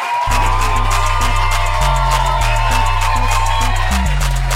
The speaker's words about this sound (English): Okay, just a little clap. And let's make it a big clap.